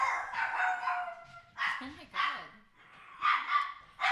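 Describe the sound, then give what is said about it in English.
Dogs bark in a few short, sharp bursts separated by brief pauses, moderately loud, with some whiny, yipping tones mixed in between the barks. “So the dogs approve.”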